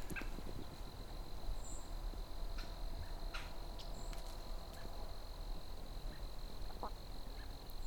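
Several sharp, brief American robin call notes ring out at irregular intervals over a steady high insect drone and low outdoor background noise.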